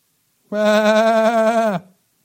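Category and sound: animal, sheep bleating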